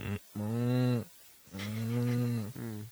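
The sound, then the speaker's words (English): A woman imitates yaks, her hand at her throat, giving two long, low mooing calls: a shorter one, then a longer drawn-out one after a brief pause, with no other talking. “she like you see her hand go a little bit and she begins to like... moo with the yaks.”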